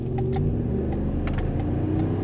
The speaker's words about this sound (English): Trying to rumble me, man. Try to rumble me at me just because you got a fucking pumpkin-colored truck. I got the same engine in it, bitch. I'll rumble your ass. Try to accelerate for me.